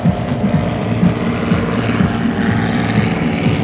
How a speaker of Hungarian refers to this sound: Várjál, most jön egy repülő.